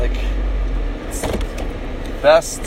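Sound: car interior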